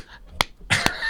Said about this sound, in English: I mean, the clapping, I wasn't clapping at you, but the clapping. Yeah. Yeah. The clapping over the drums.